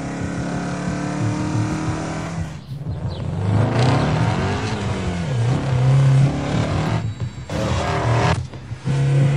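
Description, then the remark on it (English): A Ford GT350 sports car engine revs hard and climbs through its gears, the roar rising and dropping in pitch with each shift, with a hiss of tires spraying over a wet road surface underneath. “Again, a wet road.”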